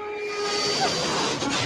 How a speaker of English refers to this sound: What is happening? What does that mean? It's an airplane.